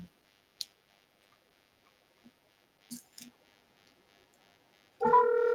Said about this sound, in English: Let's dial up Tim here.